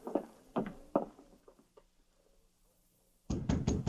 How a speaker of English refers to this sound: It was dawn of the following day when Glenn White got up to answer a knock on the cabin door. He opened it to find Sergeant Preston and King standing outside.